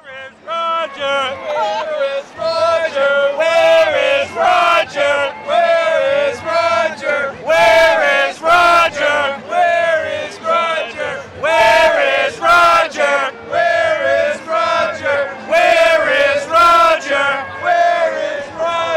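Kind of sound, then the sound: crowd, stadium crowd roaring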